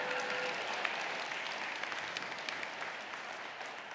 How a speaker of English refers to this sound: Now you can applaud.